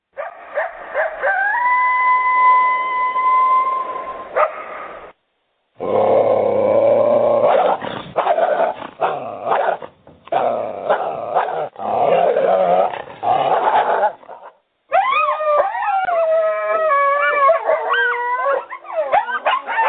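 A pack of coyotes howls and yips in a chaotic chorus, with long wavering howls, bursts of high yelping, and brief pauses between outbursts, fairly loud.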